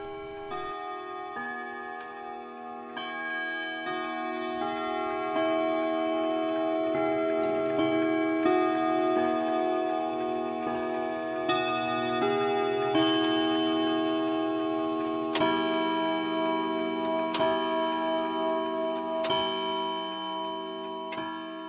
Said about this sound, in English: And I can still hear her favorite chiming clock in her living room. It chimed the Westminster chimes.